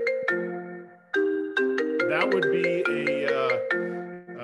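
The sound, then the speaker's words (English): A phone ringtone for an incoming call plays loudly, a bright synthesized melody of quick repeated notes with sharp attacks, while a man briefly speaks at the start. “I'm getting a phone call here.”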